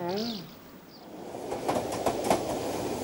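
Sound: train clattering along rails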